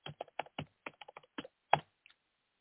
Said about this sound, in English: Man, you're a loud typer, dude. Am I? How many keyboards do you go through in a month? Just one. This has been a good keyboard for me.